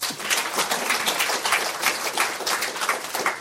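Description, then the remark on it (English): Steady applause from an audience welcoming a discussion panel on entrepreneurship, many hands clapping in a dense, even patter that holds at a fairly constant loudness throughout, with no voices over it. “So this is the perfect group of people to take the discussion on, and I would be delighted if you could give them all a round of applause to start off with.”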